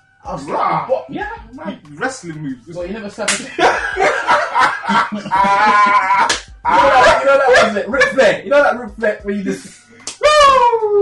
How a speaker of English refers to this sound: So for me, everywhere else you get it, I'll slap a chest.